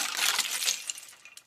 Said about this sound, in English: Breaking glass? That's dangerous. Listen again. Here's a hint. They point down and are slippery. Icicles! You guessed it,